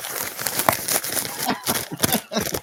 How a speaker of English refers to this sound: Is that it? Crumpled up on the Arby's wrapper?